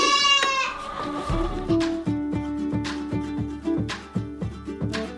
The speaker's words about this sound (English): So let's meet the newest goats on the homestead farm. So it's time to do the goats. My goats. So let's get moving.